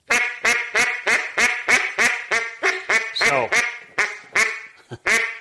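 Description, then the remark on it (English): A duck call is blown, sounding about a dozen loud, sharp hen quacks with the notes cut by the tongue, in a steady, rapid cadence that tightens briefly near the end, with no talking over it. “That's the part of your tongue you cut a note with. Okay. I don't actually cut a duck call off.”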